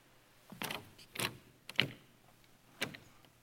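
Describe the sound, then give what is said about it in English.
A locked door handle is rattled in four short, sharp metallic bursts spaced unevenly apart, fairly clear against a quiet background, with no voices. “Because they walk right up to the front of the line and they find out the door's locked.”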